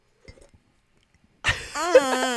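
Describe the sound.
After a near-silent moment, mugs, one in a koozie, knock together in a single clink in a morning toast, quickly followed by voices cheering loudly over it.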